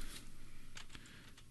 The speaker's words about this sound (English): You're just gonna be stuck on the keyboard not talking.